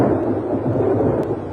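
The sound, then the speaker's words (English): A deep, steady rumble of thunder from a lightning strike rolls on without pause, loud and heavy in the low end, with no distinct sharp crack and no voices. “Lightning is the most dramatic form of energy to be found in nature.”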